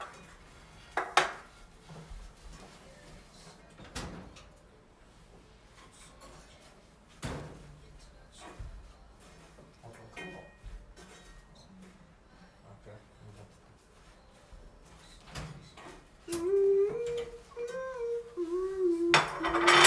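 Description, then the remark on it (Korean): Plates and dishes clatter and clink in a series of sharp, irregular knocks as a plate is fetched, with a voice briefly heard near the end. “형 접시 하나 있을까요? 접시 갖고 와요.”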